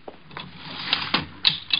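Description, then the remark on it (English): An elevator door clatters shut in a quick series of sharp metallic clacks and rattles, about six uneven knocks over two seconds, moderately loud with no voices. “Get in the elevator.”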